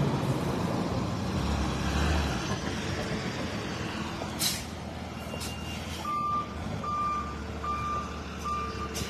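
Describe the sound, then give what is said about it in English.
A heavy tow truck engine rumbles as it arrives on a public street, and partway through a steady series of evenly spaced reversing beeps begins, sounding clearly over the low idling drone. “Here comes the tow truck.”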